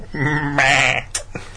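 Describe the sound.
A voice imitates a goat's bleat, one loud, quavering, nasal "baa" lasting about a second, followed by a couple of short breathy sounds.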